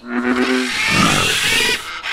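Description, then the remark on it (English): A loud frog croak in the rainforest: a low, buzzing pulsed call that turns into a long harsh, rasping rattle, lasting about two seconds with no talking. “I can croak as loud as I want, as much as I want.”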